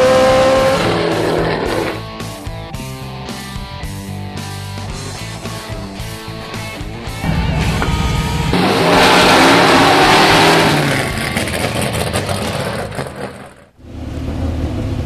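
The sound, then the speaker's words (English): A Trans Am series race car with more than 850 horsepower, at the Willow Springs race track, roars and revs through gear changes, with tire noise and a surge of louder acceleration midway, then a brief drop before the engine picks up again. “This is my first professional race, and it's in the Trans Am series. This is my car.”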